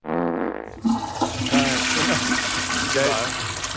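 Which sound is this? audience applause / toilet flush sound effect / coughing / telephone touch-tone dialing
toilet flush sound effect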